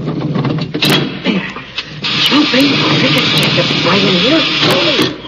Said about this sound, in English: Here's that lead door. Lend a hand, buddy. It takes two of us to open it.